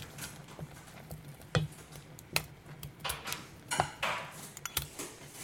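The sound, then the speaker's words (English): Clattery kitchen handling: a series of sharp knocks and clicks as a cupboard door opens and a bowl is taken out for porridge, with a soft hum underneath and no talking. “The cupboard door opens.”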